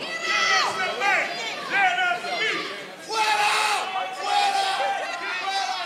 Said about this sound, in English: He looks out at the crowd as people begin pointing at him and screaming.